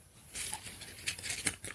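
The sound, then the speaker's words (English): A crumpled piece of paper is torn in two in one continuous, crackly rip lasting over a second, fairly quiet, with a few sharper snaps toward the end and no voices. “Now there are two pieces of paper.”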